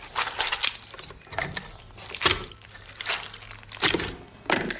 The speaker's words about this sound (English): Ringing out a flannel filled with custard while walking on stilts! Correct.